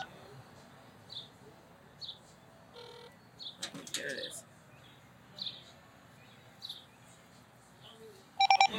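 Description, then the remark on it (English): A quick burst of touch-tone dialing beeps from a broken phone that sometimes hangs up when dialing out rings out loudly at the very end, after a quiet stretch where a voice briefly speaks and soft, evenly spaced chirps repeat in the background. “They said every time you try to dial out, sometimes it hangs up.”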